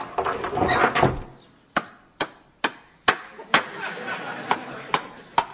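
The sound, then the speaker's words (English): A hammer strikes wood about ten times in a steady, unhurried rhythm, each blow sharp, following a brief burst of rustling and clattering at the start. “Where's the hammer?”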